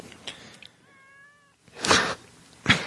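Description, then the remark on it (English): A pet cat gives one drawn-out, tonal meow at moderate volume, followed by two louder bursts of rough, noisy sound; no one speaks. “I'm gonna ask Anthony's cat.”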